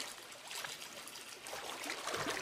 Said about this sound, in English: Though the sting of the medication was more bearable as he stepped into the tub once more, he still gasped as he immersed himself in the water.